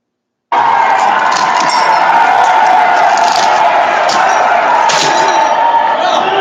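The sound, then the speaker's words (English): A man smashing a window: several sharp banging, cracking hits land over a loud, constant roar of crowd noise and shouting that fills the whole clip. “This guy right here of, you know, basically him destroying a window and then pushing an individual.”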